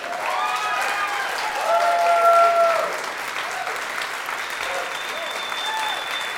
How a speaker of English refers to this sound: And that's not just your family clapping. That is not just your family clapping. I could just tell. They're really loud, though.